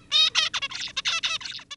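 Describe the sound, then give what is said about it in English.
A juvenile male zebra finch sings a quick run of about ten buzzy, harmonic-rich syllables in under two seconds. The notes are high, raspy and slightly irregular, with no voices. “Here's a male zebra finch's song as it goes from a wee little bird to an adult.”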